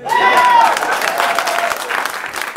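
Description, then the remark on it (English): A crowd breaks into loud, sustained applause, dense clapping that fills the space, with a brief whistle or cheer rising over it early on before the clapping gradually thins. “I'm done. Clap.”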